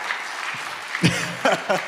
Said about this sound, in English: I know, isn't that wonderful? Yeah, let's clap. That's it, come on.